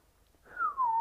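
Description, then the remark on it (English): A person attempting to whistle a song's melody whistles a single short, clear note that slides gently downward in pitch. It starts halfway through after near silence and grows louder toward the end. “I can't even fucking do the whistle.”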